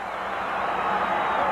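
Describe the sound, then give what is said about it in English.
A huge arena crowd at a World Wrestling Federation event roars and applauds in a thunderous ovation as Heavyweight Champion Hulk Hogan is introduced, a dense, steady wall of cheering and clapping that swells slightly louder over its short span. “Listen to that thunderous ovation.”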